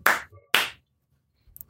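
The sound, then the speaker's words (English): Two people clap: two sharp, loud hand claps about half a second apart, each with a brief ringing tail, followed by a pause and the start of another clap at the very end. No talking. “It's hard to time the clapping correctly when there's two of us and we're in the wrong country.”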